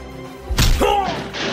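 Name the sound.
punch landing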